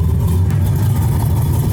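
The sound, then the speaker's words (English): A Pontiac Fiero mid-engine, two-passenger sports car engine rumbles loud, a deep steady growl held for a couple of seconds with no voices over it. “Pontiac Fiero, North America's only mid-engine, two-passenger production car.”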